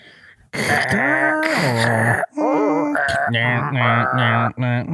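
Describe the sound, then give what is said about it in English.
A voice mimics a dial-up modem connecting: loud, continuous warbling tones and gliding pitches laced with harsh, hissy screeches, running about four and a half seconds with one brief break midway. “You couldn't use your phone, but what kind of noises would that make?”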